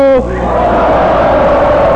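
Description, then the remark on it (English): An audience yells "ho" together in one loud, sharp burst in response to a poem, then keeps roaring and cheering for a couple of seconds, full. “I want to hear a poem that makes this audience yell, ho!”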